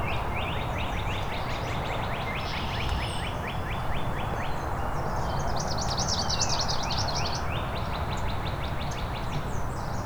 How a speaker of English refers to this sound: The palm warbler's not a very strong singer compared to the cardinals around here. Some of the red-winged blackbirds. I think I've got a second palm warbler now.